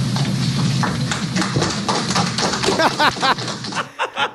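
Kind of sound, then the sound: crowd, audience applause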